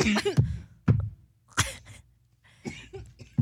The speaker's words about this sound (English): She's coughing.